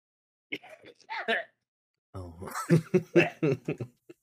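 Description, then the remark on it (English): A few short, sharp coughs, followed by a longer run of voiced, breathy bursts that sound like laughter mixed with more coughing. “Let's now rate your coughs in the middle of the show's killing me.”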